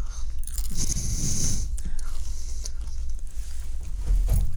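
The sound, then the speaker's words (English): Close, loud crunching of food right against the microphone, with repeated bites and chewing in an irregular rhythm, no talking, and a muffled thump near the end. “You're just gonna crunch in the microphone.”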